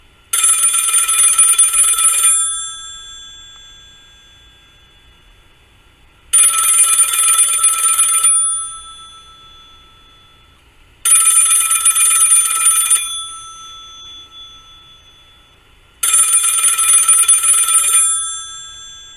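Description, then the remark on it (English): An old-style business telephone bell rings four times in even bursts of about two seconds each, separated by quiet pauses, loud with no voices. “The phone rings again.”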